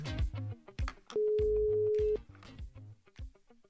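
A single steady telephone ringback tone sounds for about a second, loud and clear, over rhythmic background music with a thumping beat; no one speaks.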